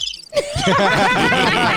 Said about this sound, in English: That was from me to you. You get the crickets on that one.